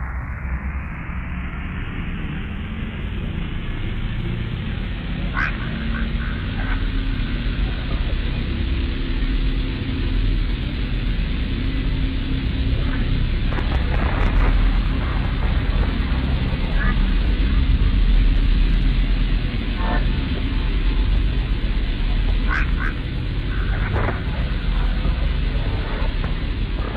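Drone metal music from a 2013 EP whose vocals are EVP recordings: a dense, sustained wall of heavy low-end distortion rumbles steadily without a clear beat, with faint flickers of higher tones drifting over the murky drone.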